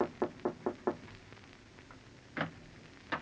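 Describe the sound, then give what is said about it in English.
Five quick, evenly spaced knocks on a wooden door upstairs, followed after a pause by two more separate knocks; no voices. “Your throat feels a little tight as you go upstairs and knock on the door.”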